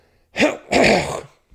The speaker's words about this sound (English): Sorry, that'll be the last big old cough.